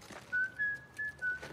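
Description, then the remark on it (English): A person whistles the nursery-rhyme melody 'The Farmer in the Dell', the tune the character Omar whistles when he is coming around: four clear, pure notes in a steady rhythm, fairly loud, with no talking. “You know how Omar whistles that tune when he's coming around? Farmer in the Dell?”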